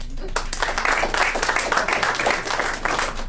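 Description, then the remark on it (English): A comedy show audience breaks into applause in answer to a question about heterosexual men going to strip clubs with male friends, a dense, steady wash of many hands clapping at once, sustained at a fairly even loudness for a few seconds. “By a round of applause, who here is a heterosexual man who has gone to a strip club with their male friends?”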